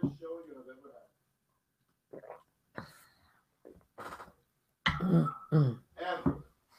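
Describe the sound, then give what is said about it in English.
A person coughs and clears their throat in a series of short, rough bursts, quieter at first and then louder near the end, with brief pauses between them. “I had a little bit of a cough, like...”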